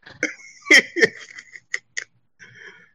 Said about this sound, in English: Lord, I caught the hiccups.